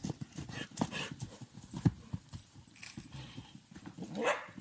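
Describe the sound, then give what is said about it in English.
A dog barks in short bursts while horses run fast in a paddock, with irregular thudding hooves and a rising horse call near the end, outdoors. “Not sure if the horse is happy or not making those sounds, but hopefully they are having fun.”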